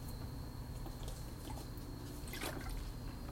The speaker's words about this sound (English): So excuse me, guys, while I take a sip of Diet Coke.